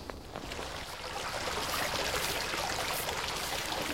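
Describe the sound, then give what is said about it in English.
Treated effluent water from reed beds pours and splashes steadily from the final discharge point into a local watercourse, the Coventry Canal, a continuous rushing flow with no breaks and no voices. “And this is it, the final discharge point of our treated effluents done by the reed beds.”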